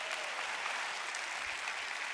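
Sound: audience applause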